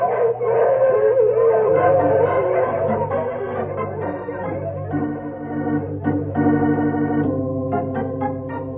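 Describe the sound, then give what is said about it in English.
A team of sled dogs, one named Skeeter, pulling a sled through deep snow, howl together in a loud, sustained chorus of overlapping wavering cries, with a few shorter yips and barks breaking in toward the end. No one speaks. “So I'll break the trail for the dogs.”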